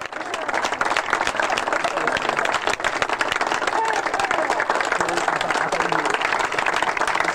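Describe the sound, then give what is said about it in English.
A large stadium crowd cheers and applauds in a dense, steady roar of clapping and shouting that holds at an even, loud level for the whole stretch, with no clear individual voices. “And the crowd's not cheering because of the good sportsmanship.”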